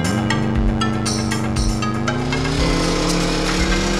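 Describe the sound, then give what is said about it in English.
A loud, steady vacuum cleaner roar with a deep, droning motor tone. Its pitch climbs slightly partway through, then holds. It is continuous, with no voices. “It's RoboCop's vacuum cleaner.”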